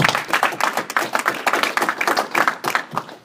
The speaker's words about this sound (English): We're very thankful to have Benito Floro, the head coach of Canada's men's national team, here today. So if I could ask for a round of applause.